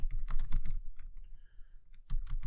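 Rapid, close-up clacking of keys on a computer keyboard, coming in quick irregular bursts with a short lull in the middle before the typing picks up again.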